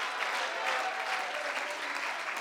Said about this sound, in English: If you believe that, once again, clap your hands and shout hallelujah.